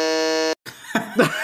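A quiz buzzer sounds a loud, flat, steady buzz for about half a second and cuts off abruptly, followed by a brief pause and then laughter and chattering voices.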